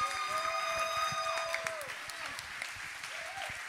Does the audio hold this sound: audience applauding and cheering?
yes